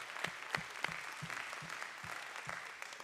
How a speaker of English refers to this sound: Let's give everybody a great big round of applause.